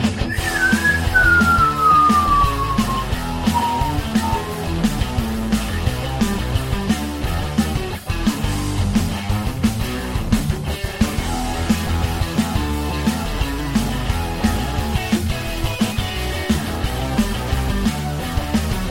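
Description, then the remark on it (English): A whistled imitation of a rocket engine: a loud, steadily falling whistle over the first few seconds, backed by a dense, continuous roaring rumble that carries on to the end. “I need you to give me a rocket engine noise”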